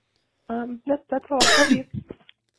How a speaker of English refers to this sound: I'm so sorry. I coughed.